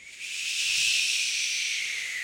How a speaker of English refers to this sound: That's a plane. You'll hear those sound effects in the show as well.